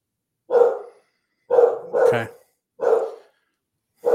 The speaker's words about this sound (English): Okay. That's a good dog imitation.